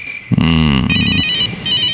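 phone ringing

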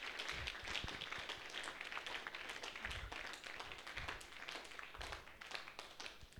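audience clapping

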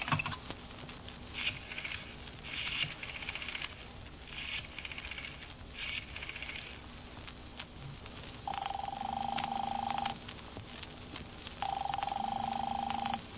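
rotary telephone being dialed

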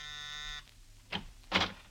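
doorbell buzzer

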